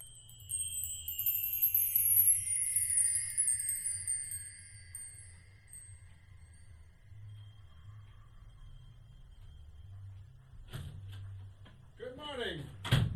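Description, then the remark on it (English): Near the end, an office door on the listener's right opens with a sharp clunk and a brief creak as someone enters, following a long stretch of steady low hum and fading high tones. “He should be coming in through the door on your right any second now.”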